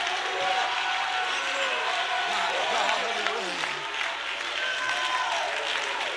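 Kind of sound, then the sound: crowd, audience clapping and shouting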